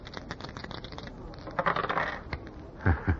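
Old dice rattle with a quick run of small clicks, then clatter louder across a hard surface and land with two knocks near the end. Nobody speaks.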